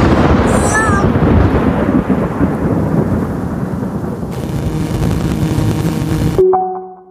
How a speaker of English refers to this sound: Boy, this thunderstorm is getting pretty wild. Oh, it's getting pretty windy.